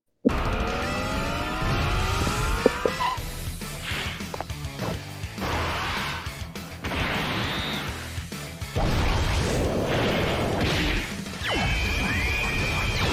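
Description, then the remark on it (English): Video game sound effects of a Super Attack in which the character Trunks drives and stops a car: an engine revving with rising sweeps, a braking squeal, and loud crashes and whooshes layered over continuous noise, with no talking. “And both Super Attacks is just him driving and stopping the car.”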